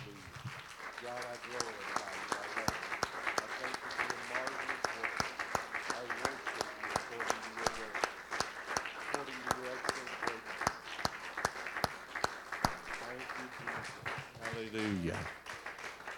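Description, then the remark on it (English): A church audience claps their hands to Jesus in sustained, dense applause, sharp clap transients running throughout, while voices call out and speak over the clapping. “And I tell you what, the first song was all about clap our hands to Jesus. Why don't we do that right now?”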